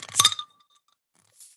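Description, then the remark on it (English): A bottle of Topo Chico mineral water, the regular kind, being opened: a sharp clinking crack with a short ringing tail, a pause, then a brief, soft fizzy hiss. No one speaks. “I'm going to crack open one of my own.”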